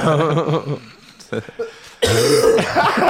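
Someone coughs close by, a few short muffled bursts followed by a louder, harsher, drawn-out cough with a raspy throaty edge, mixed with other vocal noises.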